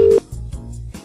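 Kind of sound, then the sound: signal or alarm, telephone dialing tones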